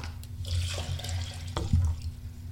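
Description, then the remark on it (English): Water pours steadily into a glass, a continuous splashing trickle with a low hum underneath and a brief clink partway through. “Do you need another glass of water?”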